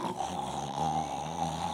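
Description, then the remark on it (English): A voice mimics snoring with one sustained, rattling, nasal drone lasting under two seconds, fairly loud, with no other talking. “You were snoring like there's no tomorrow.”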